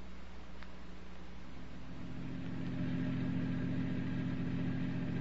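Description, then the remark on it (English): A car engine, with the car parked at the curb, runs with a steady low hum and faint mechanical whine, growing a bit louder and rougher partway through, as if revving up. No one speaks. “My car's at the curb. Let's go.”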